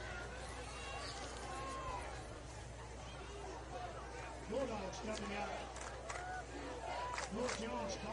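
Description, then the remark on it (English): Steady crowd noise from a football stadium during a game between Warrior and the Hanceville Bulldogs, a dense murmur of many voices with scattered louder shouts and calls rising out of it, continuous throughout. “The Warrior crowd settled down a little bit. Hanceville over there starting to find their voice as we wait.”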